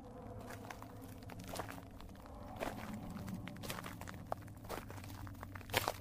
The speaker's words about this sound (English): What was that? Not sure. I hear footsteps.